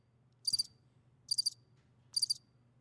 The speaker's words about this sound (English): That was crickets.